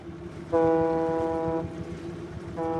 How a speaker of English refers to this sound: Yeah, we're just leaving the harbour here, and you can see some of the local fishing boats in the harbour, and we'll be heading out to Klettsvik Bay,